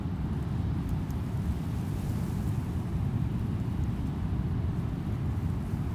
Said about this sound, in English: The roar of the ocean continues, although more distant and less detailed. This will be a sound we'll experience in each of our stops today.